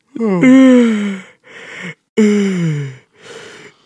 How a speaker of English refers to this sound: That was a long yawn, yo.